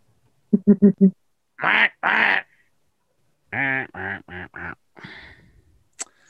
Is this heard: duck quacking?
yes